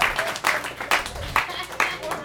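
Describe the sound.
An audience at a comedy show claps for a comedian in a loose, steady rhythm, with sharp bursts of claps about twice a second over a murmur of voices.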